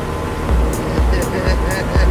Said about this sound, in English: No, you also have to have, like, techno music playing. Yeah, I got it. Hold on, here you go. It's a techno music with boat sounds.